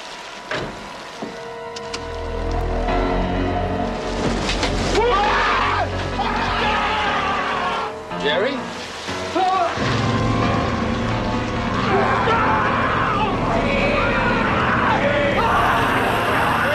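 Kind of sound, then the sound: crowd, people screaming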